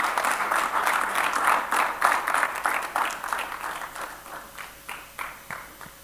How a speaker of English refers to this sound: I think you should clap for me. I've been preaching for that.